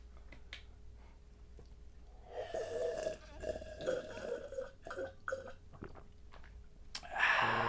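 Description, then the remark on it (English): Someone drinks water in a run of throaty gulps and swallows over several seconds, ending in a louder burst like a satisfied exhale or small burp. Nobody speaks. “Oh, this is delicious water. This is great.”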